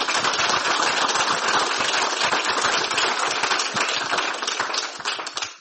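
An audience applauds steadily to thank a guest speaker at the end of an evening talk, dense overlapping claps forming a loud, sustained wash of sound for several seconds before beginning to thin out and fade at the end.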